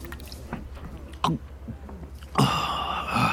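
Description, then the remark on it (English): A drink is poured into a glass: a couple of soft clinks and drips, then a steady, bright stream of liquid that continues to the end over a low background hum. “Hey, who else wants another drink? I think I need one.”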